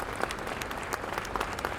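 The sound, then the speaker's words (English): An audience at the Trucker Talent Contest claps steadily for the volunteers and judges, a dense patter of many hands sustained throughout at moderate loudness, with no voices rising above it. “Let's give those guys a big round of applause for making this happen.”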